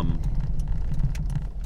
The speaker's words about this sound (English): Well, I've come to my place of employment. I'm going to need to hop out of this car and get to work.